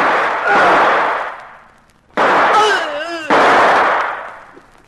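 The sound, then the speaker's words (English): Three loud gunshots from a .38 ring out over several seconds, shooting two people, each a sharp blast with a long fading tail, and a voice briefly cries out between the second and third shots. “you shot both of them”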